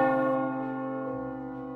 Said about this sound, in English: When the clock struck midnight,